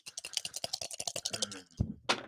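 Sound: three dice being rolled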